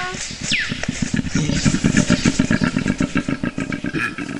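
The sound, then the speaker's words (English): A koala bellows in the bush among eucalypts, in a deep, rasping series of rapid grunting pulses, like a snoring, revving engine, loud and steady for several seconds, with a brief high chirp early on. “koala? It's getting a bit crowded out here.”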